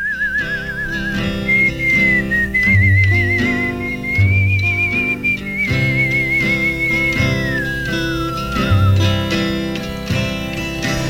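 A man whistles a slow, sustained melody with gentle vibrato, clear, over a soft backing of guitar and bass in a steady rhythm, opening a song in a later take of a recording session.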